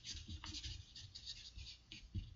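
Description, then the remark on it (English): A pen scratches steadily across a piece of paper in short, uneven strokes as something is written down, a dry hissing scrawl broken by soft low bumps and taps, with no one speaking. “Let me get a piece of paper here.”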